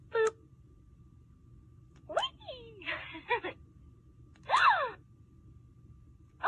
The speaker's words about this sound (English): Yeah. Like a gasping sound. That is yucky. That is yucky and creepy and weird.